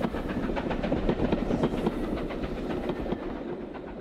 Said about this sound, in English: And even if it was only steaming by and all you could catch was the silhouette of the double-sized new Liberty Bell through the display window, they came out just to see that train whistle past.